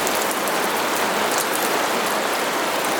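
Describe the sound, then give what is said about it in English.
Steady, gentle rain patters down on a surface, a dense, even hiss of countless small drops with faint individual taps, continuous with no voices. “Dark, stormy rain. Gentle, pattering rain.”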